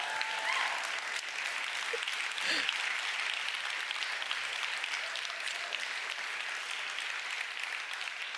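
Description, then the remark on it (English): Steady, dense applause from a crowd, a continuous wash of clapping at even loudness that holds throughout without fading, with a brief voice or shout faintly heard partway through. “Don't applaud that too much.”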